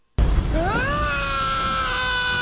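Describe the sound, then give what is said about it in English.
A loud, sustained scream sound effect bursts in abruptly as a mailbag is opened, its pitch sliding upward and then holding steady at a high shriek for about two seconds, heard on its own without any talking. “Whip open this mail scream.”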